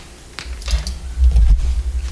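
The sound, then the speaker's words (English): Mechanical adding machine keys clack in a quick, irregular burst of sharp taps, followed by a heavier low thunk of the mechanism as its lever is pulled. Fairly loud, with no voices. “Where did you get that clear visor and old school math machine that goes cha-chunk when you pull the lever?”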